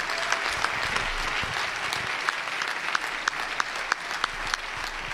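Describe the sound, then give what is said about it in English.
A crowd applauds a man for his work that day, clapping steadily for several seconds, a dense wash of hand claps with a few sharper, louder claps standing out, with no voices over it. “Let's all give him a wonderful round of applause for his work today.”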